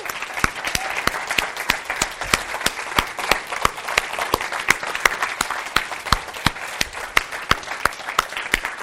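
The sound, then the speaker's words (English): A church audience bursts into a sustained round of applause for God, many hands clapping in a dense, steady patter with sharper individual claps standing out throughout, loud and continuous with no talking. “For you guys who've been here in this last year and you believe that God did something miraculous, let's join together and let's give God a round of applause for how good he is right now.”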